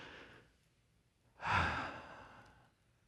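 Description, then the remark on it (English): A quiet breath drawn in, a short pause, then a long, loud, breathy exhale like a sigh that slowly fades out: a deep breath in and out. There is no talking. “Why don't you just take a deep breath right now?”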